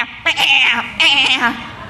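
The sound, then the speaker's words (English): Two wavering, bleating baas from a sheep, one right after the other, fairly loud, each about half a second long with a quivering, nasal tone. “There's the baaing of sheep.”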